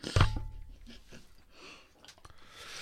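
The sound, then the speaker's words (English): Wet chewing with crisp crunches, starting with a sharp loud bite and then a steady series of softer munching sounds for a few seconds. “Somebody said I chew kind of loud.”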